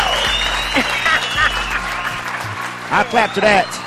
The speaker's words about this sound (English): I clap to that.